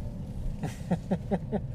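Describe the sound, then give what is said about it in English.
Steady low road rumble fills the cabin of a moving car, with a quick run of five rhythmic voiced bursts, like short laughs or syllables, rising briefly over the drone. “Which isn't really a fair test since there's so much noise in the car.”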